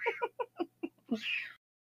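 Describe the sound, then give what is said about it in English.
A kitten meows: a quick run of short, high, chirpy cries followed by one longer, brighter mew, with no other sounds around it. “And there's going to be random kitten noises in the podcast episode, and people are going to be like, what just happened?”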